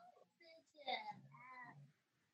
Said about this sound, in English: Sick of this cat over here in this corner.